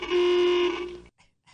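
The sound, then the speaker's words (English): A car horn blares in one loud, steady honk lasting about a second, then cuts off, leaving a couple of brief, faint noises afterward. “Yeah, there's a lot of horns that are going to be honking out there.”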